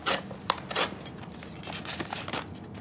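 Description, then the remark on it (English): A paper knife slits open an envelope containing a letter, a dry scraping and tearing in several short rasping strokes over a few seconds, with no voices. “If you would be so kind as to pass me over that paper knife.”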